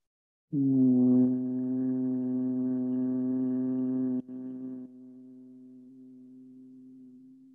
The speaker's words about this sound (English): I want you to hum very lightly. Make the sound be in your throat, not in your mouth. Find the pitch where it enters the throat.